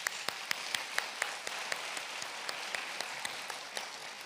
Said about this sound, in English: All of those sponsors are in the room, I believe, so I really want everyone to acknowledge them and give them a round of applause.